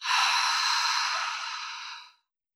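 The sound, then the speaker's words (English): A single long, airy breath released into the microphone, a deep exhale through the mouth like a sigh after a deep inhale through the nose, steady for about two seconds before trailing off into silence, part of a meditation breathing exercise. No talking. “Last time, breathe in deep through your nose and let it all go through your mouth.”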